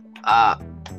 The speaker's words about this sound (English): Shut up, cat.